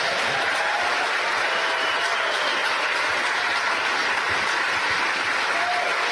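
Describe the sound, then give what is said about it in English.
Sustained applause from a large crowd at mission control in Hawthorne, cheering a successful engine shutdown, stage separation and upper stage engine ignition during a rocket launch carrying an Intelsat satellite. A dense, steady wash of clapping and cheering holds at a constant loud level throughout, with no clear individual voices standing out. “You hear the applause in the background here stage in Hawthorne.”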